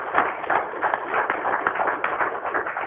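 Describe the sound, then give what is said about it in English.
A crowd applauds Chief Morin steadily, a dense crackle of many hands clapping at once that holds fairly even in loudness for the whole few seconds, with no voices over it. “So, Chief Morin, how about we give a big round of applause to him for his leadership and vision on this?”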